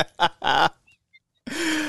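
Loud bird calls: three harsh squawks in quick succession, two faint brief chirps, then one longer raspy cry. No voices.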